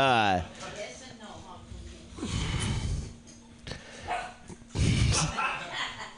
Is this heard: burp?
no